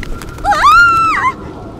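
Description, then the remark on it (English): A horse whinnies once, a high, wavering neigh that rises, holds for under a second and then trails off, standing alone over a low background hiss. “Apparently, the restless spirit of an old nag has taken possession of that poor, wretched raven's mortal being.”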